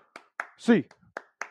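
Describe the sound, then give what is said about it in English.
Sharp hand claps ring out in a steady rhythm, about five in quick succession, with a short voiced shout breaking in between them partway through. “It's time. A clap time, baby.”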